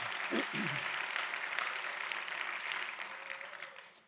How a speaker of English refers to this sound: Somebody give the Lord another clap offering. Hallelujah.